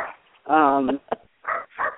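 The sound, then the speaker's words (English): A dog barks several times in uneven bursts, starting with a drawn-out, whining bark followed by shorter, sharper ones, loud against an otherwise quiet background, after somebody knocked at the door. “You got a dog? Yeah, I got a dog. Somebody knocked at the door.”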